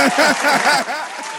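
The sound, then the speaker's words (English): A crowd applauds and cheers, with steady dense clapping and scattered whoops and voices rising over it, loud throughout and easing off slightly toward the end. “Can we get a round of applause for my mother?”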